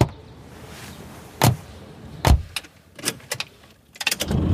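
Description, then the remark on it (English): Inside a car, a couple of solid thuds and a cluster of sharp clicks and rattles are followed by the car's engine cranking and catching at the very end, fairly loud, with no talking. “Now, of course, this is a virtual car ride, since we're still social distancing and all that.”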